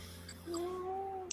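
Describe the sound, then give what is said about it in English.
A single drawn-out meow from Kitty, a pet cat, fairly clear, rising slightly in pitch and holding for nearly a second, ending with a small click over a faint low room hum. “And again, we have Kitty, who is in complete agreement with this conversation.”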